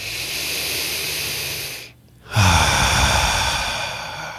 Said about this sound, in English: And if you're watching us on video, you saw that when I took a breath in through my nose and when I breathed out through my mouth, my shoulders didn't go up and down. I wasn't breathing vertically. I was breathing horizontally.